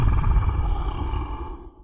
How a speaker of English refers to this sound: The dying trees stand high, blocking the light from outside. Growls are heard as they make their way down a dirt path.